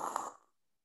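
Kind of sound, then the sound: vocal imitation, person imitating snoring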